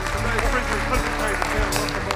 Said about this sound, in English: How many years? 17. That's worth a great big round of applause, I think. Happy anniversary.